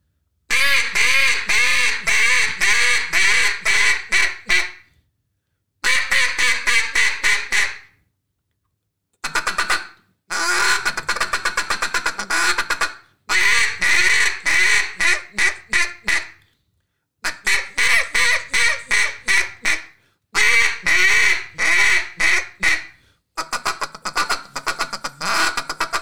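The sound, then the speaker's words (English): A handheld duck call blown loud in a long sequence of rapid quacking runs, grouped into several bursts separated by short pauses, with no talking, as a caller goes through the calling progression for working in ducks from about 200 yards out. “So, could you really quickly act like you're working in some ducks right now and just kind of go through that progression.”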